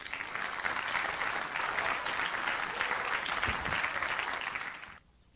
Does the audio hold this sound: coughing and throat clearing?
no